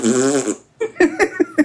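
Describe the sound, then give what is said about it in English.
A drawn-out, buzzing fart noise made with the mouth, then a quick run of four or five shorter sputtering puffs in an uneven rhythm, fairly loud. “Fart noises.”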